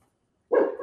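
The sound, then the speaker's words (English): After a moment of silence, a small dog lets out a single soft, short bark, slightly whiny in tone, with no one speaking; it is a little 'baby bark' the dog was taught to do. “And now your dog's barking. No, she's doing like a little. I taught them how to do baby barks because I'm on Zoom so much.”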